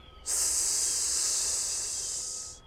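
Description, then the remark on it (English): A loud, steady hiss of air escaping from a deflating car tire after the car crashes down off a slipping branch, stuck in mud in Siberia in the dark. It starts abruptly and holds for over two seconds before tapering off, high-pitched and airy, with no voices. “But we know it's not good because we hear a loud hissing sound.”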